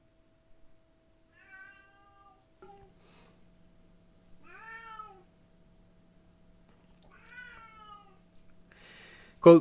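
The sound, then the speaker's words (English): A cat meows three times in drawn-out, wavering cries spaced a couple of seconds apart, moderately loud, with a low steady hum underneath and a sharp thump at the end. “Oh my God, this cat.”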